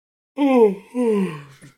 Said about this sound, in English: No, honestly, that yawn was not intentional, but then it became intentional.